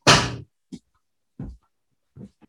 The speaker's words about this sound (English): No, okay, we'll close the door. You're out. I love you. Closing this door too.